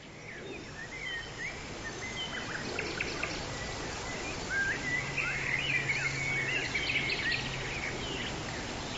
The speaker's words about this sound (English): Now begin watering the ground gently, just enough to soak the ground.